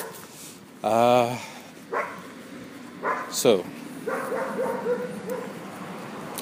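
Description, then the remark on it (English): A dog gives a loud, drawn-out bark near the start, then a few shorter yips and a thin, wavering whimper trailing off over a quiet background. “Yes, it's not easy being a dog.”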